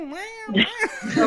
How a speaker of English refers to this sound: You hear you talking, you hear the cat in the back.